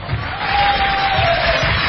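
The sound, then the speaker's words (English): A large crowd yells and cheers at full volume, a dense, continuous roar of many voices with a few higher shouts rising above the din, steady for the whole short moment. “People are going crazy, and ladies and gentlemen, that is reason enough to get down to Kila Beach.”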